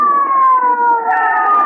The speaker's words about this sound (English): Stand aside, folks. Here comes the ambulance.